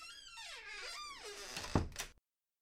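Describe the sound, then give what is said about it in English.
The front door of a house creaks shut with a long, wavering squeal of hinges, ending in a soft thud as it closes. Fairly loud, with no voices. “Sneak into the dark. Closed door behind you.”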